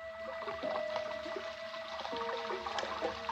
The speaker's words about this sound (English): That's the way it sounded when it rained, because the room was just below gutter level, and the rainwater rushed by the room's only window.